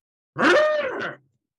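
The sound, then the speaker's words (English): A person imitates a quiz buzzer with a single loud, nasal, buzzing vocal tone held for just under a second, then cutting off. No other sounds accompany it. “Let's go around and let's get your buzzing sounds.”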